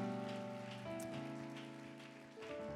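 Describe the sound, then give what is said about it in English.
A church audience claps for first-time guests, a dense, steady patter of many hands that holds for the whole stretch, over sustained organ-like chords that shift pitch partway through. “Give them a hand clap today.”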